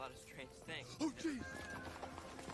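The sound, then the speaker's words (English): Horses gallop past with a quick, uneven clatter of hooves, partly buried under voices talking over the top, steady for a couple of seconds. “Yeah, those horses are running right through.”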